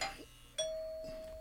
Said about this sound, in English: Ding dong. Is that the 6 foot guy?